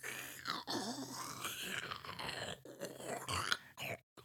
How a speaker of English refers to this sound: I think your straw may be clogged with all that noise.